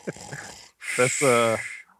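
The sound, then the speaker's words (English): Someone mimics a snore into the microphone: a short breathy inhale, a brief pause, then a longer, rattling, throaty exhale that fades out. “I am typically sleeping during your draft corner, so you can hear me snoring the mic”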